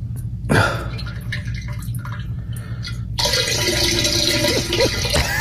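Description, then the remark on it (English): Diarrhea from a sick man splashing into a toilet: a short wet splatter, a lull of quieter dripping, then a sustained gush of liquid pouring into water, almost like a running faucet. “That was shit. That was him. That's poop.”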